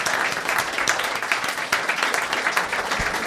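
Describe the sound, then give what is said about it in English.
An audience applauds a man coming up on stage, a dense, continuous wash of many hands clapping at a fairly loud, even level throughout, with no voices standing out. “How about a round of applause for a gentleman kindly...”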